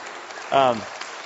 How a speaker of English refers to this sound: She's going to be working here at Horizon, which I'm very excited about. Oh, you can clap for a second.